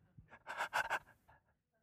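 Soft breathing from a baby lying in a warm bed, a gentle airy inhale-exhale rising and fading over a couple of seconds in otherwise quiet, peaceful surroundings.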